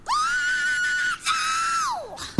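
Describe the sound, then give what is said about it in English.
A recorded scream played back, loud and high-pitched, holds a steady pitch, breaks off briefly, then resumes and slides downward as it fades, with no talking over it. “It's that bit. Yeah, it's like a good that. Scream.”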